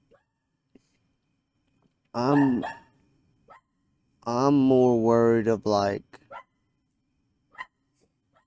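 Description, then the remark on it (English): A dog barks and whines in two loud, drawn-out bursts, the second longer with a wavering pitch, while a person briefly speaks. “Throw that damn dog a bone, God, man.”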